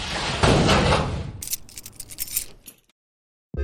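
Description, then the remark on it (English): A door swings shut with a broad whoosh and thud, followed by a quick series of metallic rattles and clicks as the lock is turned, then silence. “Shut the door. Don't forget to lock it.”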